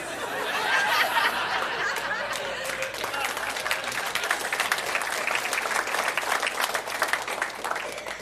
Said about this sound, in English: Now you're clapping because we're excited about somebody being rescued.